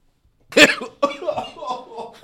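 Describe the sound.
A single sharp, loud cough bursts out into the microphone, followed right away by a person talking.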